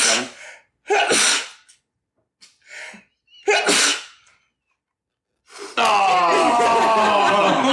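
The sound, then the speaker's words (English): A series of loud sneezes in quick succession, each preceded by a short sharp intake of breath, ending with a longer, noisy, sustained burst. “That's exactly how I sneeze.”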